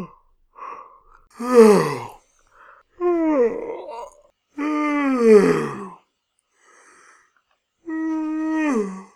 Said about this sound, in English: Yawn. Yawn. Yawn. I ran out of yawning noises, so I just started saying yawn. Yawn.